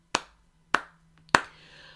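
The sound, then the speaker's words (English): Three sharp hand claps land at a slow, steady pace, each a crisp slap that fades quickly. The last clap is the loudest, with no voices in between. “Clap, clap to Anacostia right there.”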